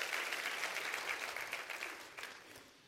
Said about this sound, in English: Isn't it great to be in God's house? Why don't you clap your hands all over the building and say, I'm happy. I'm happy to be in the house of God.